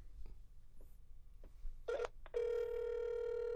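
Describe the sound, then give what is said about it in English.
A phone line tone on an outgoing call to a doctor: a short burst, a brief pause, then a loud, steady ring tone that holds to the end over faint background noise, with no one talking. “It's ringing.”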